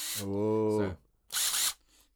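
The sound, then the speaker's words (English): A small cordless screwdriver drill, designed especially for putting in screws, whirs steadily for nearly a second, then a short, harsher burst follows after a brief pause, fairly loud. “The other is designed especially for putting in screws. This is the one designed especially for putting in screws.”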